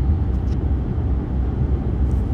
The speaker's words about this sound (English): Well, this was a very weird podcast because I'm in the car and I wasn't very much prepared